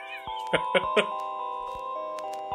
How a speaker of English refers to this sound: 1,000 doorbell dings go here.